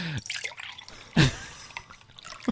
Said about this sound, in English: How many glasses are you pouring? Do you think it was actually done? Do you think it's a performance? I'm guessing a lot of this is repeated things. But it's not the same one over and over again.